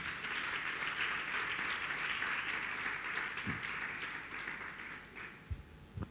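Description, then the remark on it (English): A church audience claps hands for Jesus in a steady, dense wash of applause that holds at an even loudness for several seconds, with a few low thumps near the end as it begins to thin. “Church, if you agree with me, then clap your hands for Jesus.”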